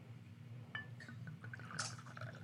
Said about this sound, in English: But I usually use the same size bottle. Okay. So pour each one into about a shot into each one or so. Yes, that'd be plenty.